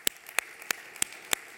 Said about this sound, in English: Simon Says, clap your hands.